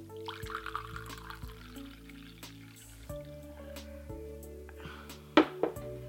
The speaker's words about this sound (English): So I'll pour myself a cup of tea.